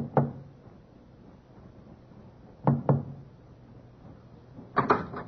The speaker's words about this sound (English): First officer Forsyth, with watchman Petrie at his elbow, knocked discreetly on the door to B-24.